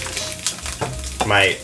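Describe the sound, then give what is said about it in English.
An egg with a broken yolk sizzles in a frying pan, a steady crackling hiss with a few brief scrapes and clinks, and a faint voice briefly in the background. “I was gonna do some sunny side up, but the yolk.”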